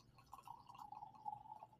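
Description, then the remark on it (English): Mead of 12% ABV pouring steadily into a glass as a 3-ounce tasting pour, a continuous gurgling stream with a rising tone as it fills, fairly quiet, lasting under two seconds with no talking. “So, 3 ounces is a good tasting pour.”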